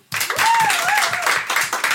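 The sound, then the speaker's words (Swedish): An audience bursts into dense, sustained applause to vote for the story they liked best, many hands clapping at once in a loud, steady wash of noise, with a faint cheer or whoop rising above it. “Alla som tyckte Agneta Blomstret var bäst, applåderar nu.”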